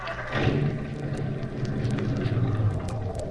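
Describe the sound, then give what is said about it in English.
A car starter cranks while the engine sputters and coughs, a steady rough rumble with low droning tones and uneven crackles running throughout, with no voices. “What's the matter with this car? Sounds a little like asthma.”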